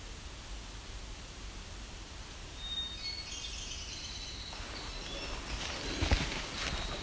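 A Nashville warbler sings a short, high series of notes partway through, faint against a steady wash of outdoor hiss and a brief rustle near the end.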